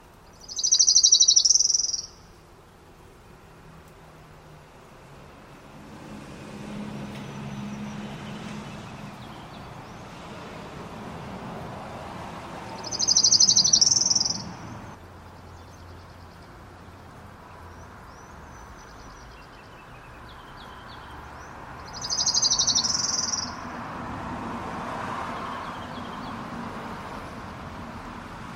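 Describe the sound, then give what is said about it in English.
An orange-crowned warbler sings three times, each a short, bright slow trill about a second and a half long, spaced roughly ten seconds apart over a soft outdoor background hum. “So here is the orange-crowned warbler.”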